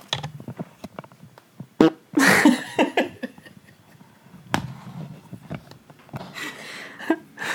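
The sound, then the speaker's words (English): A short, raspy fart bursts out once near the start, fairly loud, surrounded by scattered clicks, thumps and rustling with no talking. “That was the first time I ever recorded a fart on here.”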